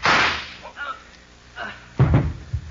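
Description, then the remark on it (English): A single loud pistol gunshot cracks at the start and fades quickly, followed by brief muffled vocal sounds and a short grunt-like voice near the end. “He's reaching for his pistol.”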